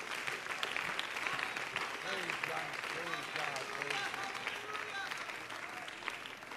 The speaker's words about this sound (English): Hallelujah. Let's lift the Lord up with a hand clap of praise. Would you do that?